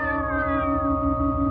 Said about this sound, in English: What's that racket? Just cats. People around here keep a lot of them.